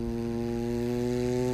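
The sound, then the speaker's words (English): A voice imitates the sound of a lawnmower as it gets closer, a steady, low, buzzing drone held at an even pitch and loudness for about a second and a half, with no words. “What is that? Like the lawnmower.”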